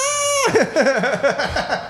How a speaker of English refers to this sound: And that was kind of a high pitched scream though. That was more like a squeal.